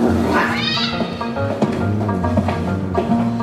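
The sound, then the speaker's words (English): A cat yowls loudly and continuously, a drawn-out wavering caterwaul with rising and falling pitch, intense, with no talking. “Did you just throw my cat out the window?”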